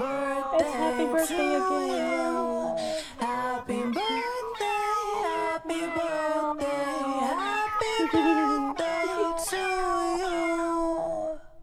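Loud, continuous cat meowing fills the whole stretch, with many overlapping, drawn-out meows sliding up and down in pitch, almost like a melody, and no talking.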